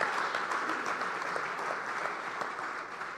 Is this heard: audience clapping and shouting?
yes